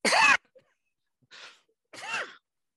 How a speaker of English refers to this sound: I think, excuse me, can I just cough